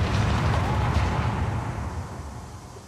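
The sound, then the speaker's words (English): A loud, dense barrage of army gunfire gunning down aliens blurs into a continuous roaring rumble with no single shots standing out, slowly fading over the last second or so. “He briefly turns back moments later to see the last of the aliens gunned down as the army rounds up prisoners from the movie set.”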